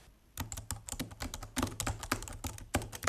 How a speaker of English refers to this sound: Okay, so basically I just finished my homework, but maybe you heard the typing noise.